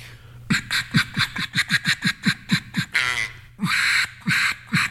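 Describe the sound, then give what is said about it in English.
A duck call blown in a quick, rhythmic run of about a dozen raspy quacks, then a short breathy rush of air and three longer, drawn-out quacks, loud and with no talking. “Which Duck Call Do I Choose”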